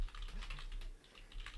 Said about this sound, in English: Executive decision, because I'm typing.